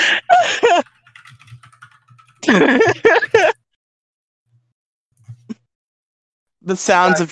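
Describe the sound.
Soft, rapid computer keyboard typing, as someone commissions a person to write a fan fiction, clicks away in a quiet stretch set between louder bursts of voices and vocal sounds, with a few isolated faint taps near the end.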